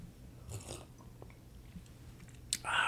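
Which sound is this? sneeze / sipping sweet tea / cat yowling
sipping sweet tea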